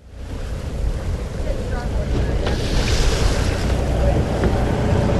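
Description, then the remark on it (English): Steady low engine rumble of a fishing boat out on open water in Bristol Bay, Alaska, its crew aboard protesting low fish prices, with wind buffeting and sea wash building slightly, and faint voices underneath. “… and the crew of his boat, the fishing vessel Top Notch, are on the water to protest this year's low price”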